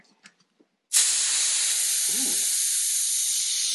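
A few faint clicks, then a keg of Fire in the Hole, an Irish red ale of about 4.5% ABV, is vented with a sudden, loud burst of hissing gas that holds steady and unbroken to the end.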